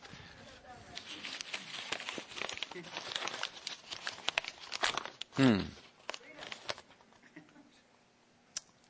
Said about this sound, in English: I mean, what church goes around and throws paper all over the floor?